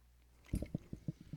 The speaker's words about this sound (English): They're chewing on candy. They're animals. They can't even just, you know, I'm really assessing your guys' impulse control, and you guys have none. We have 50 wrappers on the table. Like, they've not eaten a day in their life. There are Starbursts.